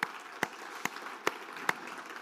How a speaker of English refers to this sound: Hey, let's give our worship team a big hand clap, everybody. They did a great job today.